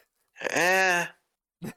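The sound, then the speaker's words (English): A single sneeze: a drawn-out, voiced, rising intake lasting most of a second, then a brief, sharp burst after a short pause. No talking accompanies it. “Sneeze?”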